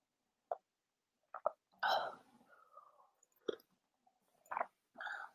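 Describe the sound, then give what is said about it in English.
Quiet mouth sounds of someone sipping tea: a few short wet clicks and smacks, one longer slurping draw, then soft swallows and lip noises with silence between. “I'm going to have a sip of my tea really quickly. So mouth sounds.”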